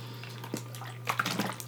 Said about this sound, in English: I've been, like, coughing crazy. I'm going to edit this part out. I'm so sorry. Again, drink of water.